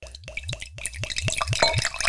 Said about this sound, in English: Pour yourself some.